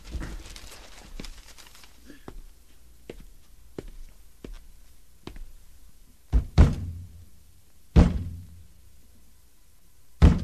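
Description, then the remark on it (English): A hand bangs hard on the side of a broken, burned-out radio's cabinet: lighter taps and knocks at first, then several loud, hollow thumps at irregular intervals, with quiet background rustle between them. “Bang it again.”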